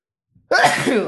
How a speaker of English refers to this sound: Sorry, I sneezed into the mic. Ew, you fucker. I couldn't mute it fast enough.